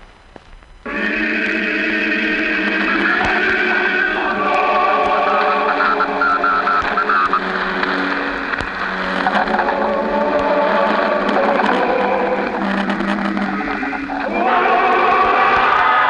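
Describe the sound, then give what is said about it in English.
A crowd in New Mexico roars and cheers as the crew of the spaceship Venture walks up the catwalk, in one loud, sustained wall of many voices. It swells in about a second and holds steady, with a brief dip before rising again near the end. “We're sorry to cut in, but that roar you're hearing, the roar of the crowd, it's the moment we've been waiting for.”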